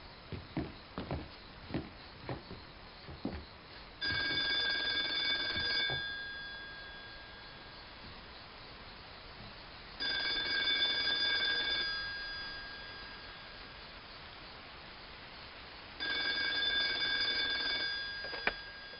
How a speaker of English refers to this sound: I stepped on the porch and the phone rang. The payphone?